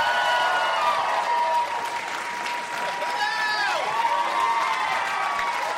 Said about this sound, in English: so I have to introduce myself. Clap for me. Pete Holmes, everybody.